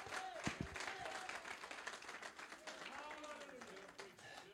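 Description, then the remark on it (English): An audience claps hands in a dense, continuous burst of applause, with raised voices calling out and cheering over the clapping throughout. “Oh, clap your hands unto God.”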